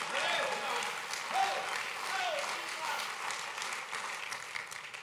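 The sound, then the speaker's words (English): An audience in Wasilla claps their hands in a dense, steady roar of applause lasting several seconds, with scattered voices and cheers rising through the clapping. “Let him hear your hand clap out of Wasilla that you're not here by force.”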